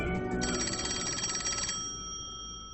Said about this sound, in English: is confused about why the phone's ringing because, of course, nobody knew that they were on the air until this moment.